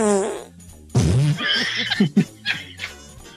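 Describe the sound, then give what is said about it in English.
Loud fart noises: a drawn-out buzzy one first, then a string of sputtering, wet-sounding bursts that trail off over a few seconds. “Don't fart. Don't fart.”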